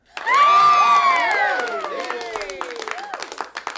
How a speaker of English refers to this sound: See, right there, the people cheering right there in my studio.